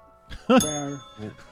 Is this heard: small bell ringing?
yes